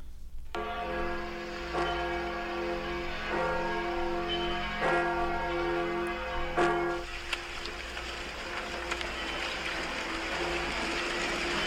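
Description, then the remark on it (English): Church bells ring out in a steady peal, several rich strikes in the first seven seconds, then fade into a lingering hum over faint background wash. “So, not any part in there did that say the bells ring for surrender.”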